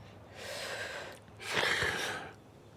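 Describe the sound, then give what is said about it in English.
A deep, airy breath drawn in through the mouth during a breathing exercise, followed by a second, slightly louder rush of breath. No one speaks. “You can breathe in through your mouth.”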